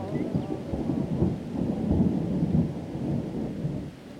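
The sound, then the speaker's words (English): A thunderstorm with a deep, continuous rolling rumble of thunder over a steady hiss of rain, loud throughout and easing slightly near the end, with no voices. “Nice weather for ducks.”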